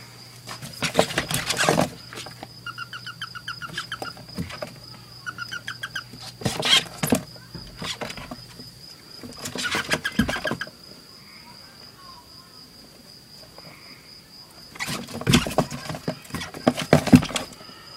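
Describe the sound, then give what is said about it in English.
Toads, 21 of them in a plastic tub, call in short, pulsed trills, a few bursts repeating, over a steady high whine, with loud scrapes and rustling clatter cutting in at intervals. “I took a deep look at myself while I was listening to those toads”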